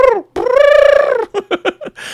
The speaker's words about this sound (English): the sea devil next to them in the storeroom grabs its head. It's like, ah, you know, making its weird porg sound.